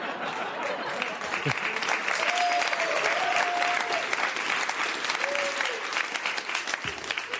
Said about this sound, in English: Oh, sure, the picture gets applause. Me, all my hard work. No, that's Matt Gaetz.